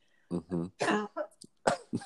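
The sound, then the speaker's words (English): A person chokes on coffee and coughs in a quick, sputtering fit of about five or six harsh bursts, some with a voiced, choked edge, with no talking. “I think we call that coughing in America. I had coffee in my mouth.”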